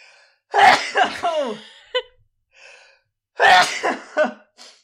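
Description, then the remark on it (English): A person sneezes, two loud bursts a few seconds apart with short sharp breaths and sniffs in between, no talking. “Lauren, tell the people what the detour segment is in case I have to sneeze again.”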